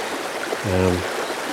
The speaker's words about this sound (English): The water's crystal clear, so the main flow of the river sweeps beside here, leaving the...